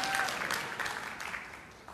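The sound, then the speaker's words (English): A church audience claps together after the preacher says he has been preaching there for 27 years. The applause comes in a dense, steady burst that holds for a couple of seconds, then gradually softens toward the end. “Don't clap.”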